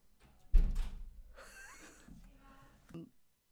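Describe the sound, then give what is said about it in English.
A door shuts with a solid thud, followed by rustling and shuffling movement and a softer knock near the end, with faint muffled sounds in the background. “Can you close the door?”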